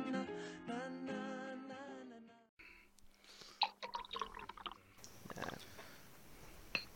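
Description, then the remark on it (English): After a few seconds of sung melody, Kirin Ichiban beer, a Japanese premium beer, is poured into a glass, with splashing, crackling bubbles and a steady fizzing hiss as the glass fills. “I'm just pouring myself a glass of delicious Kirin Ichiban beer.”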